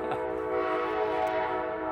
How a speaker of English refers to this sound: Man, that thing's loud. Oh, Amtrak. That Amtrak, oh, I wish you could see it. But that Amtrak train, that's where I take the Amtrak. I know all about the Amtrak. There's a stop here, right over there. Just right there.